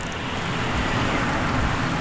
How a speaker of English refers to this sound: This car comes, and this is late at night, it comes pretty quick and is making a turn onto our street. And we're near the top of the street.